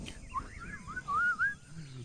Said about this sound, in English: Hey, okay. Who's whistling?